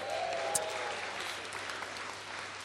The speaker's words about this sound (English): Let's have a cheer